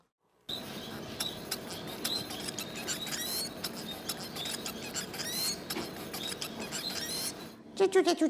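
A white-rumped munia sings a thin, busy finch song of high chirps and squeaky trills running steadily over a constant noisy background, ending with a few louder, lower notes.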